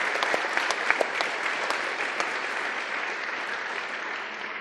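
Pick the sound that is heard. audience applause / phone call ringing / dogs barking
audience applause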